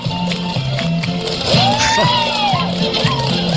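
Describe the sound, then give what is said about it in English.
A steady, dense wash of crowd chatter with music-like tonal patterns and sweeping pitched sounds, loud and continuous throughout, from a lively party going on outside the room. “Sounds like you must be having a party in your room”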